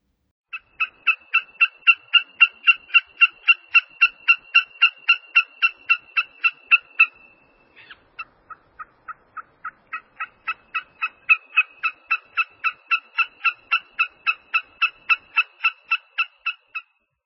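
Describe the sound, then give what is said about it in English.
A marsh shorebird calls in a long, steady run of squeaky, bark-like notes, clear, pausing briefly midway before the rapid series starts up again. “It reminds me of a shorebird, which of course it is.”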